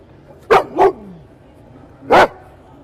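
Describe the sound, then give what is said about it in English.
Dogs bark three times, the Barkleys, the two dogs from Subaru's car ads, at the LA Auto Show: two sharp, loud barks in quick succession, a pause of over a second, then one more bark. No one speaks. “the Barkleys, the two dogs, the ones that are helping Subaru sell cars like there's no tomorrow.”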